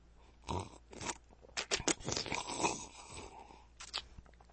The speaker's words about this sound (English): another water sip.